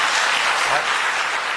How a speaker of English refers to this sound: Now, he got a rare burst of applause there, didn't he, when he said that 10 out of 10?